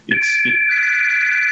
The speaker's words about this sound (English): I don't know who's trying to call me, but hopefully it's not somebody looking for a job. Sorry, I don't even know if you guys can hear the phone ringing,